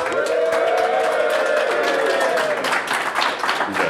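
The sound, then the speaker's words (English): A live audience at the Necronomicon 2015 convention applauds loudly for about four seconds, a dense, steady patter of many hands clapping, with cheering and whooping voices riding over it before it begins to thin out. “Crowd sound, that's awesome.”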